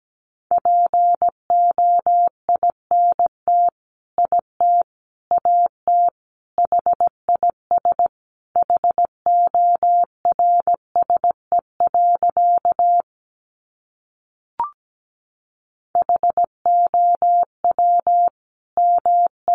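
Morse code sent at 17 words per minute, spelling out sentences built from the top 300 words: a single steady mid-pitched tone keyed in crisp short and long beeps, running in brisk groups with a brief pause and a small click before resuming.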